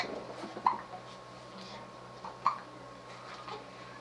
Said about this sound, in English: She had hiccups.